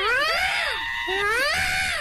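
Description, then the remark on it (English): Shrill, wailing seagull calls, a few rising and falling squeals with strong harmonics repeating in quick succession, loud and with no talking. “I don't have a seagull sign, so this will have to do.”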